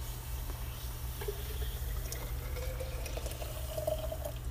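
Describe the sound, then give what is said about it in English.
A steady rush of bubbling water fills the whole stretch, with a faint rising tone emerging partway through, like a pot or kettle coming to a boil. No one speaks. “Boiling water.”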